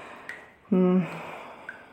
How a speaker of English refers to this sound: Didn't know there'd be so much dripping, to be honest. I'm not entirely sure if it's water.